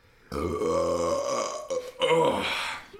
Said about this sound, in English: I'm going to put a lot of reverb and delay on this. Yeah. Bass boost that burp. Bass boost and burp.